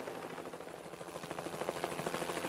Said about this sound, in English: This was no time for a chat with a helicopter.